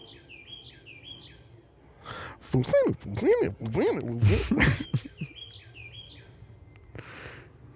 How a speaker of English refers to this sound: Hear that bird? Yeah.